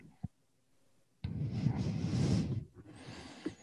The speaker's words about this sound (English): I can just hear you breathing hard. Sound angry.